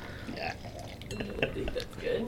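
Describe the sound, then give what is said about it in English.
Wine glugs and gurgles as it's poured into a glass during a wine tasting, a steady bubbling splash lasting a couple of seconds with faint clinks of glassware. “coming in for the pour.”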